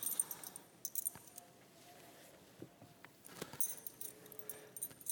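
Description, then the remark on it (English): A bunch of keys, brought as a prop by a speaker, jingles and clinks in short bursts, at the start and again toward the end, with quieter shuffling handling noise in between. No one speaks. “These are the keys living in the kingdom that we must devote ourselves in the kingdom of God.”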